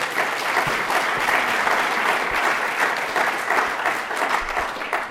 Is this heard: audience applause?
yes